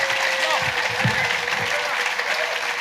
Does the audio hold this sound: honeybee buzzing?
no